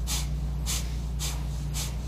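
Four quick, forceful exhales through the nose in a steady rhythm, about two per second, each a short bright hiss of air, with a low hum underneath and no talking; a bellows breath demonstrated in yoga practice, sharp exhales through the nostrils.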